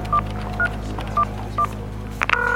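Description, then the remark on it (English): Four short electronic keypad tones beep in an evenly spaced sequence over a steady low hum, followed by a brief click and the start of a ringing line tone, as a phone call is placed to Sun Microsystems tech support. “Call Sun Microsystems. Get them on the phone now.”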